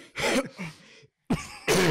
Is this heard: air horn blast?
no